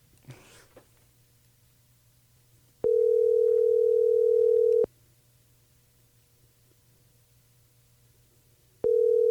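A telephone ringing as heard over the line: a steady, mid-pitched electronic ring tone lasting about two seconds, a long pause, then the tone starting again, over a faint low hum.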